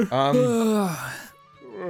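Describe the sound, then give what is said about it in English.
A long, drawn-out voiced yawn from a person, rising and then sliding down in pitch for over a second before trailing off, followed by a brief quiet pause and the start of more vocalizing. “I'm yawning.”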